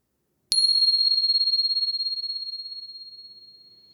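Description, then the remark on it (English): A single bell is struck once, ringing out a clear, high tone that lingers and slowly fades with a gentle wavering shimmer. “And here comes the bell.”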